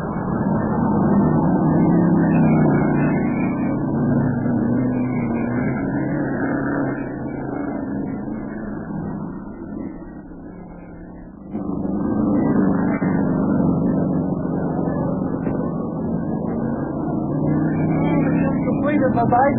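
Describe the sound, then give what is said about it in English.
Racing car engines roar steadily and loudly throughout a race, with car number three right behind the leading car, a dense, droning rumble that eases off briefly midway before surging back to full volume. “That little feller in car number three is right behind him, and he's a tricky driver.”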